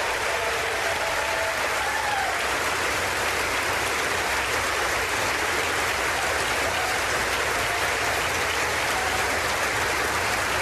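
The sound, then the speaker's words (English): Sustained applause from an audience after Kevin McCarthy says their very first bill will repeal the funding for 87,000 new hires, a dense steady wash of clapping that holds at an even, fairly loud level for about ten seconds without fading. “Cut off the clap.”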